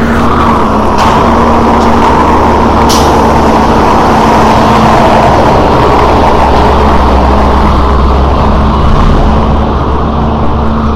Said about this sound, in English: That was the trash truck. The city is so loud.